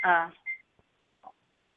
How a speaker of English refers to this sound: Sorry, I'm baking at the same time that I had to soften butter. That was the sound of my microwave in the background.